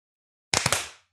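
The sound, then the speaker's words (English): A sharp hand clap, heard as a quick cluster of two or three crisp slaps that ring briefly and fade within half a second, alone after silence with no talking. “That did sound good. Good clap. Good clap.”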